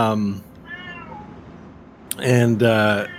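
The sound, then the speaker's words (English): A male cat meows repeatedly: a loud meow, a softer, fainter one, then two more insistent, drawn-out meows in quick succession. “Every time I think a thought, a meow enters into it, and the thought explodes into a million pieces.”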